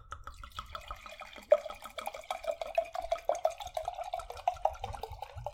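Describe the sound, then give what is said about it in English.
Wine glugs and splashes as it is poured into a glass, the tone rising steadily as the glass fills over several seconds, with no talking. “But anyways, let me pour this.”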